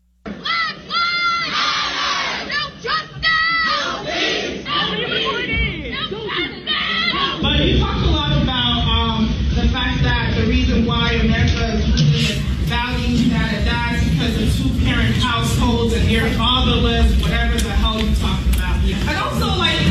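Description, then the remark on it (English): Students at the University of Buffalo yell and shout continuously, many voices overlapping into a dense roar that swells louder partway through and never lets up, drowning out former gubernatorial candidate, retired Colonel Alan West, as he tries to speak. “What goes through your mind when you hear these students at the University of Buffalo screaming down, yelling out, drowning out former gubernatorial candidate, retired Colonel Alan West?”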